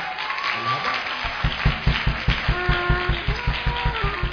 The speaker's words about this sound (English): The way you are clapping for Jesus.